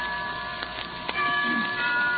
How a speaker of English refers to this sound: Why don't we both just sit here and listen to the chimes for a while?